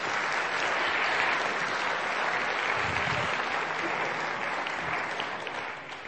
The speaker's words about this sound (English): Give them a nice applause.